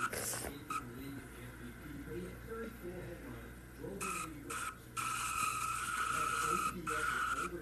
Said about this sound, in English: Oh, one car! One car is taking a tumble, and that's going to bring out the caution.